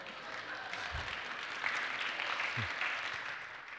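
Steady applause from an audience for a reading fills the moment, a dense wash of many hands clapping at once, holding at an even, moderately loud level throughout with no voices over it.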